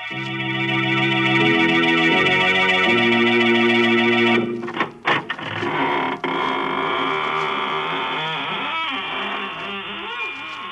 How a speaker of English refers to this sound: This is your horror host at the squeaking door of the inner sanctum.